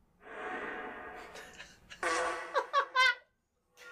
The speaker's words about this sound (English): Well? Fart?